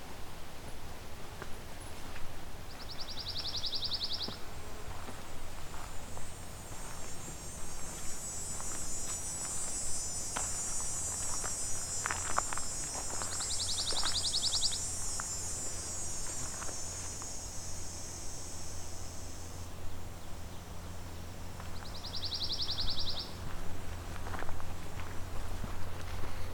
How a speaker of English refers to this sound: Looks like it hasn't taken long for me to find pine warbler.